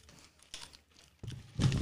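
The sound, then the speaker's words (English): A crisp, crunchy bite into a big chip, followed by a few uneven bursts of crackling chewing that grow louder toward the end, with no voices. “Wait, did you bite it?”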